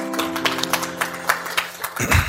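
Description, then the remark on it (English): An audience applauds a speaker's message with a steady patter of many hand claps, moderately loud and continuous, over a sustained low musical tone that drops away near the end. “Can we give a hand clap for his message?”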